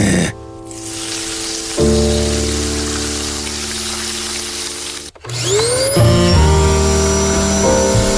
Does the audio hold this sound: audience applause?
no